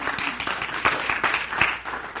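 An audience breaks into steady applause, a dense wash of many hands clapping at a moderate, even level with a few sharper claps standing out, lasting a couple of seconds.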